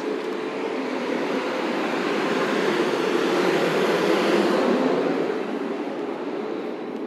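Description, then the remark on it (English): Heavy trucks roll past in a loud, continuous roar of engine and tire noise that swells toward the middle and eases off slightly at the end, with no voices. “Trucks be coming, that's when I stop, because you won't be able to hear me.”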